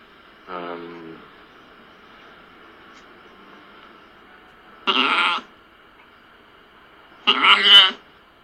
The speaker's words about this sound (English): I know you didn't mean any harm bringing this sheep in here, but I have patients, you know, kidney problems and heart problems, and seeing a sheep just like that, it's...